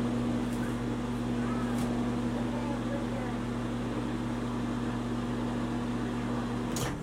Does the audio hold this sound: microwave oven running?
yes